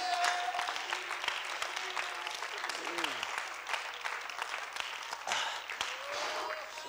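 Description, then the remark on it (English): An audience in church claps their hands unto God in sustained, dense applause that fills the whole stretch, with a few voices calling out faintly beneath the steady clatter. “Why don't you clap your hands unto God?”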